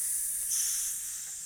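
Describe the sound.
A person hisses like a snake, one steady, airy sibilant breath held for about a second and a half, moderately loud, with no talking around it.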